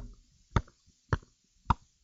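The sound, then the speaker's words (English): Three sharp, hollow pops made by a voice imitating a champagne cork, evenly spaced about half a second apart, each loud and brief against near silence. “Sound like they're opening up a champagne bottle.”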